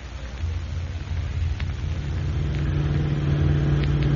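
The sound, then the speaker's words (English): A car engine rumbles steadily as the car is brought out of a garage, its low drone building slightly as it revs, with no voices over it. “Get my car out of the garage.”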